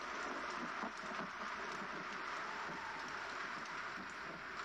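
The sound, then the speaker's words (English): A steady white noise hiss plays from a phone at night without a break, an even, rushing static with a faint rain-like texture, holding the same level throughout with no voices. “Well, actually, I need white noise.”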